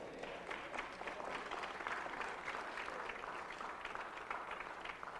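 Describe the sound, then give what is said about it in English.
A crowd claps steadily during a preacher's sermon for about five seconds, a dense patter of many hands at an even, fairly loud level that neither swells nor fades. “But when I became a man, somebody clap their hands.”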